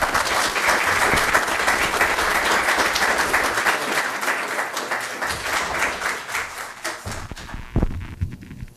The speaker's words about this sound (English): So could I ask you, with your genuine and warm applause, to welcome Minister Cravinho to the stage and say thank you for coming in to be with us today.